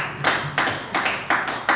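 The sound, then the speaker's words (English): A church audience claps together in a steady, even rhythm, five or six sharp beats evenly spaced, with no voices over it, giving a morning round of applause to seven mothers. “But if we can all just give all seven of our moms a round of applause this morning.”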